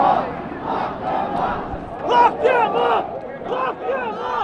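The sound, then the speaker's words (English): A large rally crowd roars with sustained cheering and shouting after Rudy Giuliani calls for trial by combat, many voices overlapping in a loud, continuous swell, with sharper yells rising out of the din toward the middle. “That really got the crowd going.”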